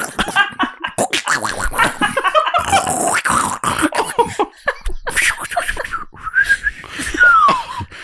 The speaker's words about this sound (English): It's now whistling. This really hurts. Your ass is whistling.